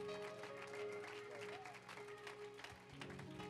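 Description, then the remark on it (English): A church audience claps steadily to welcome a visiting pastor and his wife, a dense, sustained wash of applause, with a held musical tone and some voices mixed underneath. “Come on, let's give them a great big hand clap.”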